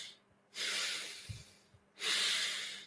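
Two long, deep breaths drawn in through the nose by a venerable Buddhist monk, each a broad airy hiss lasting over a second, fairly loud, with a quiet pause and a faint snuffle between them.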